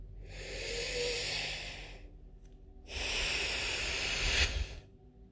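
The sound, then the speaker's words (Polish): Two long, deep breaths taken during a breathing exercise, with no talking: a slow, airy inhale lasting about two seconds, a brief pause, then a second breath of similar length that swells slightly louder before fading. “I jeszcze 2 wdechy.”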